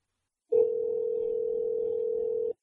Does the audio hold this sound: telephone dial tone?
yes